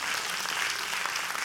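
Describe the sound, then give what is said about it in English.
An audience claps steadily throughout, a dense, even wash of many hands with no single claps standing out and no voices on top. “And I said, oh, my God, you can clap.”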